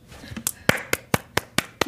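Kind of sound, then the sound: crowd, clapping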